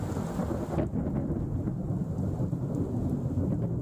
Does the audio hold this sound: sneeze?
no